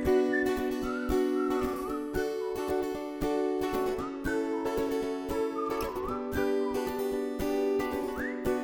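A bright whistled melody glides and wavers over a full, steady musical backing with a regular beat, staying loud throughout without any talking.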